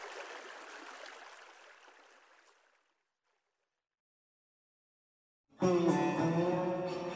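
Fast-flowing water of Mill Creek, a stream-fed river in the Midwest, rushes steadily in full flow for a couple of seconds, then gradually fades away into silence before a louder, tonal sound abruptly begins.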